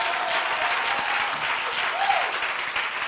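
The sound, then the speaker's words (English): A church audience claps steadily for a friend of the speaker, a dense wash of hand claps sustained throughout at an even, fairly loud level with no clear individual beats. “Clap your hands for my friend.”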